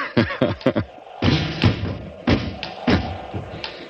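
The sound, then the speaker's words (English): A window shutter bangs repeatedly in the wind in an irregular series of loud, hollow thuds, some quick clusters and some spaced apart, with no voices. “Goes that shutter again.”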